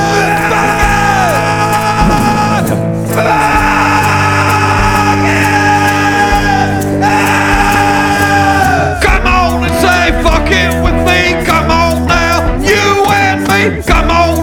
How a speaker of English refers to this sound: Let me hear your roar. Sing it, chant it, a roar.